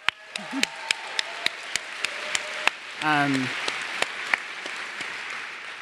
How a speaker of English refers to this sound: So I will now have the pleasure of introducing first Jane McAlevey. Big hand round of applause for Jane.